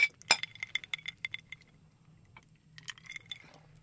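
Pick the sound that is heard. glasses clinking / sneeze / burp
glasses clinking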